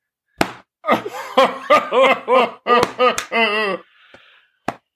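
A hearty, rhythmic chuckle rolls out in a string of voiced bursts, trails off into a soft breath, and is followed by one sharp, short slap on a belly.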